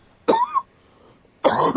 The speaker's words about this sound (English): And apologies for my cough, too.